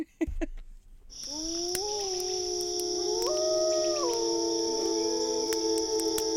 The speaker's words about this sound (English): Two Neolithic hunters sit around a campfire. Wolves howl in the distance.